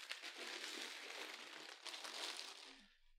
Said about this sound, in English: I had problems opening the first lot of chips. They're a bit tough. A little rustling.